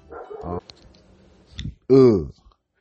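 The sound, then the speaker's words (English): A dog barks, a short bark first, then after a pause a quieter yip and a final loud, sharp bark, with faint clicks in between. “Had to go snuff the dog out.”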